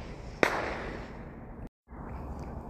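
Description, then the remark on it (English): A single sharp firework bang cracks out over steady outdoor background noise, followed by a short rumbling echo that fades away before the sound briefly cuts out; fireworks set off by kids across a lake while carp fishing, about six or seven so far. “Now I've got kids firing fireworks across the lake.”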